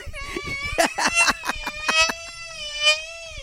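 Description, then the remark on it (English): A loud, sustained high-pitched scream, called a chandelier scream, with a bright, ringing tone, broken by rapid pulsing bursts for about three seconds before trailing off. “That's called the chandelier scream, y'all.”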